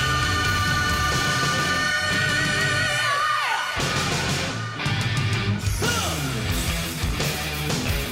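A rock song plays on the radio, loud and steady throughout, with dense distorted guitars and shouted, sliding vocal lines over a driving beat. No one talks over it.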